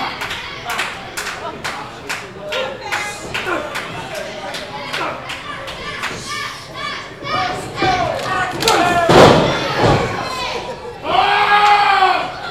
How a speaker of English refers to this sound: There's the power of Preston Maxwell. Big shoulder block knocking Pat Powers right to the mat.